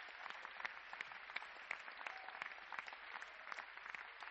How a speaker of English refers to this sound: Clap for Jesus.